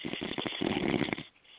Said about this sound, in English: Y'all come in here, a little pretty little bitch snoring.